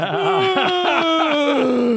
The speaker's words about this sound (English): I'm gonna yawn and close my eyes for a second.